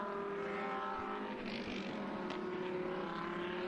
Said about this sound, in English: Just listen to those cars. I know, isn't it great? Isn't it great? We don't need to say anything, do we?